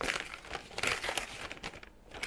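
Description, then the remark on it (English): A plastic Lego bag crinkles and rustles loudly as it is torn open, a continuous crackly scrunching with sharper bursts, no voices. “I like opening these.”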